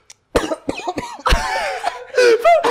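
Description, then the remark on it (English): A loud fit of coughing: several harsh, rapid hacks in a row with raspy, strained vocal edges, continuing without pause for a couple of seconds. “Bro, he's spoken cough for a little.”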